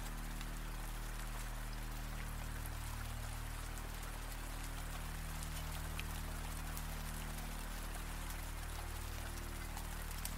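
Steady rain falls without pause, a dense hiss speckled with sharp individual drops over a low, constant rumble. It stays even and moderately quiet throughout, with no voices.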